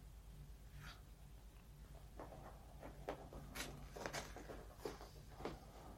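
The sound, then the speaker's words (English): A dog, Andre, sniffs at a carpet in a series of short, breathy puffs and snuffles, fairly quiet, with a steady low hum in the background. “He's having a good sniff of the carpet.”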